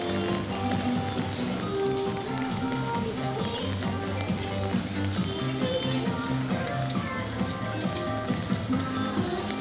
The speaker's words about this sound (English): Incidentally, it's what it sounds like when you're walking in the rain. But we were thinking it sounds a lot like the room in the Japan Pavilion, like the J-pop room.